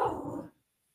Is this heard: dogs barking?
yes